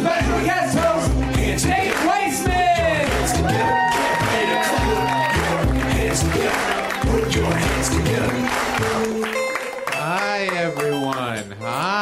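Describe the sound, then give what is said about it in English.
A large crowd at the UCB applauds and cheers loudly and steadily, mixed with music, while a voice whoops with a rising, sliding call near the end. “Put your hands together. Please clap yourself up.”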